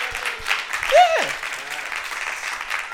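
An audience at an evening teaching meeting claps for themselves for a few seconds, a dense, even patter of many hands, with one short whoop that slides down in pitch early on.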